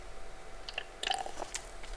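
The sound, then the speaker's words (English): A quiet sip from a drink: a few soft wet mouth clicks and a brief slurp around the middle, followed by a faint swallow, with no talking. “Hold on, I have to take a sip.”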